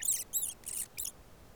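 A mouse named Mr. Jingles, on the ground, gives four quick, high-pitched squeaks in a row, thin and chirpy, over faint low background noise, then falls quiet.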